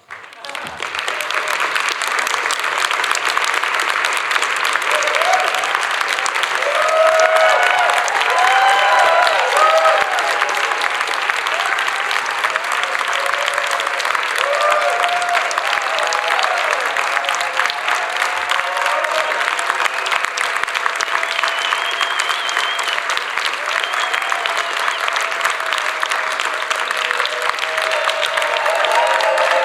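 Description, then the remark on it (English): A large, standing crowd, including the technical crew, gives sustained, loud applause, a dense steady wash of clapping lasting about thirty seconds, with faint cheers and voices mixed in. “So I've asked the technical crew, if you all could stand up with me, we're going to give Walter a 30 seconds applause.”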